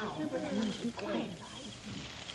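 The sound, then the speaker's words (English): Low, hollow hooting calls, a person in a forest imitating an owl as a signal, come in a couple of short wavering bursts over a faint murky background. “Hear that? What? An owl.”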